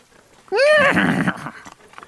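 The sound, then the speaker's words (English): A horse being spurred on lets out a loud whinny lasting about a second, followed by rough snorting and faint scuffling that could be hooves moving on the ground. “He looks forward and spurs on the horses.”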